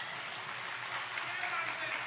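An audience applauds with dense, steady hand clapping that stays fairly even in loudness for about two seconds, a crisp, hissing wash of many overlapping claps.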